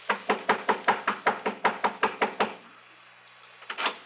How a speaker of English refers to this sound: I was pounding on the front door of the Cartwright home over in Lakewood.